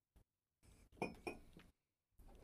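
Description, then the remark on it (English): Hibiki whisky is poured into a glass with smoke sitting at the bottom, in a brief, gurgling stream lasting about a second, with a couple of bright glassy clinks rising out of it, then a short rustle after a pause. No one speaks. “And then when you pour it in there, the smoke will kind of disperse out.”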